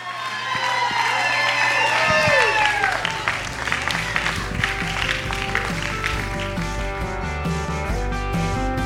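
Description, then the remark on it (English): A church audience claps steadily in praise of God on a Friday night while voices shout and whoop over sustained organ or keyboard tones, loud and continuous throughout, with several people calling out excitedly at once. “Come on, if you're saved, I want you to clap your hands and give God the best Friday night shout of praise you got.”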